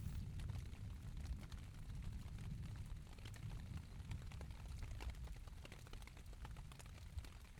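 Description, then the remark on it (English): Steady rain pattering on a tent roof, countless soft droplet taps scattered over a low, constant rumble, quiet and continuous with no voices. “The gentle pitter-patter of rain on the tent's roof is such a calming sound.”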